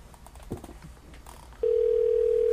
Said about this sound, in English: Is Scott ringing now? Answer the phone.